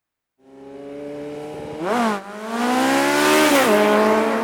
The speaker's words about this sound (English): The Suzuki GSX R750 motorcycle was built for speed, and it whipped down the block.